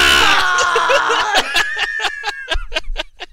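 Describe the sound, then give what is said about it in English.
A man lets out a loud, strained scream lasting over a second, the wrestling commentator Michael Cole's scream, then it breaks into a run of quick, rhythmic bursts that sound like laughter. “You get out of the Michael Cole scream.”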